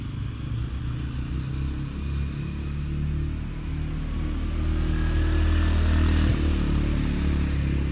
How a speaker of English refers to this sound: And by cars, I mean like ATVs and motorbikes.